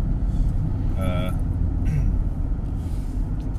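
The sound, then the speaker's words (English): Steady, loud low rumble of a car in motion, engine and road noise droning continuously from the cabin, with a short tonal, voice-like blip early on and faint hiss above. “Do I need to try and cancel out a bit of the car noise, or is the car noise good?”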